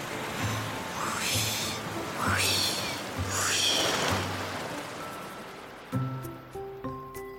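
Soft waves wash in and recede on the shore in a steady rolling rhythm, each swell of surf hissing up and fading, with no voices; a few faint tones follow.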